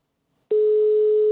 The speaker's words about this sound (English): So let's wake her up. German ringtone. Not pleasant.